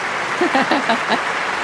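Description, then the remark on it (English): Steady recorded applause from a sound-effect button, an even wash of clapping through the whole clip, with a few voices briefly audible over it. “And over there on the applause button is”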